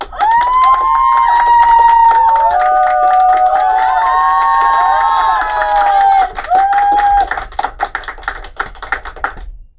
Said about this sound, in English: Now's the moment to clap, people. Now is the moment to clap.